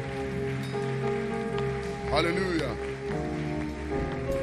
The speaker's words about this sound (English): Thank you, Lord. Give Jesus a mighty clap of praise. I mean, clap for Jesus. Oh, yes, yes.